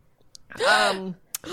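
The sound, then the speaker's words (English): A person lets out one exaggerated, theatrical mock French gasp, a voiced drawn-out intake that rises then falls in pitch. It is fairly loud, followed by a quick breath. “It had to be a French gasp.”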